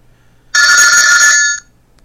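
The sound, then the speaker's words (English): A single loud burst of the 'Old Phone' ringtone from a phone's My Sounds menu, an old-fashioned telephone bell ring: a bright metallic trill lasting about a second before stopping abruptly, with no talking around it. “I have one called Old Phone.”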